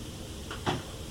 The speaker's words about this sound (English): You can hear us go outside, then the closet door closes.